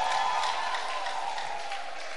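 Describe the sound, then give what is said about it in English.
A crowd claps steadily for Jesus, a dense, even wash of many hands with no voices rising above it, holding at a consistent level from start to finish. “If you're beautiful, if you're a beautiful man, can you put your hands together for Jesus?”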